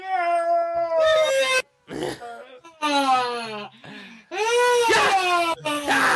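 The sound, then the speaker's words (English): A voice imitates an exaggerated yawn: loud, drawn-out moaning wails with sliding pitch, repeated in several long bursts separated by short breathy gaps. “is Ongenagama one of those people who yawns like a...”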